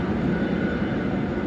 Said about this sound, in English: Monday morning at Dublin Airport, damp and blustery as aircraft taxi to the terminus